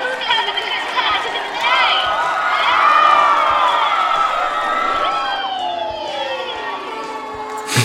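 A huge concert crowd cheers wildly, a loud, sustained roar of shrieks and high-pitched screams layered over one another, holding steady and swelling slightly midway without letting up.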